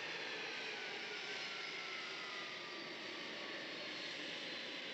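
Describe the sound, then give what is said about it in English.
A steady, powerful roar of large jet engines fills the whole stretch, broad and continuous with a faint rising whine, like airliners running with no voices. “They're playing with the big aeroplanes. They're so extraordinary.”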